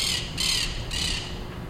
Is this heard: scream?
no